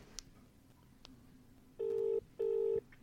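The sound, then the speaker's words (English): A telephone ringing tone on the line: two steady buzzing pulses in quick succession, a double ring, fairly loud, preceded by a couple of faint clicks and low background hiss, with no talking. “It's ringing. I know it's ringing.”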